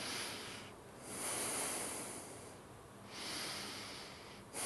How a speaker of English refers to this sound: Like one is doing calisthenics. You know, that's not a natural breathing. That was a forced, rhythmic breathing that I imposed, thinking I know how to breathe better than body does.